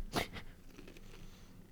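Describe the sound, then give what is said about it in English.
Crisp crunching from chewing chips: one sharp, loud crunch followed by a smaller one, then near quiet with faint mouth sounds. “oh my god, stop sure eating the chips if you're gonna die.”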